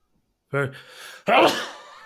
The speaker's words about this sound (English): Hey, Gesundheit, Schönheit, Intelligenz. Dusty in here.